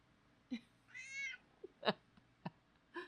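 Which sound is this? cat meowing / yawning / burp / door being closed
cat meowing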